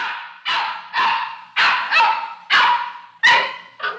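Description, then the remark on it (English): A puppy barks in quick succession, about eight sharp, high-pitched yaps in four seconds, loud with no talking. “It was little more than a year ago that a puppy was brought to the shelter for homeless animals on New York's Upper East Side.”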